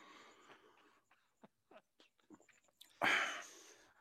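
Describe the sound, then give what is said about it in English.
Sipping of a glass of wine, called Verdangi or Vindange: soft slurping and a few small wet mouth clicks, ending in a louder, breathy rush of air right after the swallow. No talking. “Let me take a sip of my Verdangi.”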